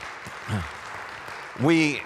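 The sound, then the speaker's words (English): A crowd gives a steady hand clap of praise to God, a dense wash of hand clapping that fills the whole moment, while voices call out over it, with one louder shout rising near the end. “Everybody give God a hand clap of praise.”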